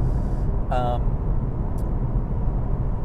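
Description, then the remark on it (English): Steady, loud road rumble of fast traffic going by as the speaker's vehicle slows down to let speeding cars pass, with a brief high-pitched tonal squeal partway through and no clear speech. “So trailer brakes, I'm just going to slow down here and let all these speedsters go so I don't have to talk, yell at the top of my lungs.”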